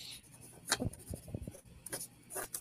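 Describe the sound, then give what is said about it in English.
Papery rustling and scratching in a few brief, uneven bursts, like sheets of paper being shuffled and smoothed out on a table as someone gets their paper ready, with no voices. “Let me get my paper ready.”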